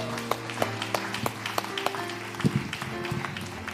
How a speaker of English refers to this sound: Let's give them a round of applause, right?